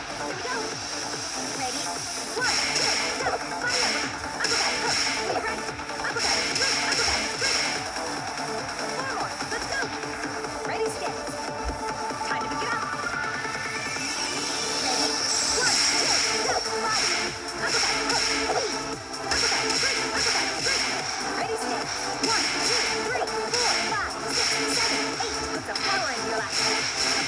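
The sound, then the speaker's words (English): The Fit Boxing video game plays: rhythmic punch impacts and quick whooshing swipes repeat over dense, steady backing music, with a voice faintly mixed in, at a constant, moderately loud level. “Anyway, let me show you how fit boxing works.”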